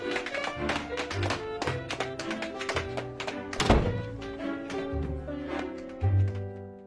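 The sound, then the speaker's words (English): Tap dancing footsteps just outside a door clatter in quick, uneven bursts of sharp taps and heavier thunks, continuing steadily over a tonal, music-like background at moderate loudness. “Like, she was tap dancing the entire conversation,”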